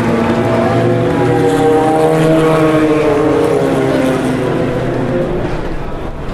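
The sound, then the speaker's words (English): A loud, raspy Nissan prototype race car engine roars past, its pitch bending as it goes by, with a steady, continuous drone that fades slightly toward the end. “So all the LMP2 cars are passed, and here is the first of the Nissans. That was that raspy sound at the end.”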